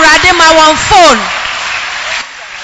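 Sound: audience clapping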